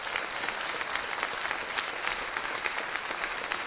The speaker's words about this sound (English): I got to break out a new applause on that one.